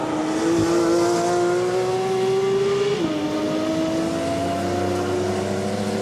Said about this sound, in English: And then you've got the GT3 RS. I'll play that one for you here. It's going to sound very similar, of course. Going over to rumble strips. Yeah. Actually sounds a little bit more high pitch.